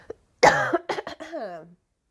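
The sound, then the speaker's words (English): A loud cough: one harsh burst followed by a few quicker, smaller hacks, trailing off into a brief voiced, throaty sound before silence. “Actually cough again, y'all.”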